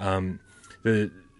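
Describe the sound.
A siren holds a steady, slowly falling tone throughout, faint but continuous, while a voice makes two short bursts of sound over it.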